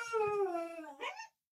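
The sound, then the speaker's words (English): A dog sounds off: a drawn-out, falling whine-like cry followed by one short, sharp bark, with no one talking. “Hold on, my dog's barking.”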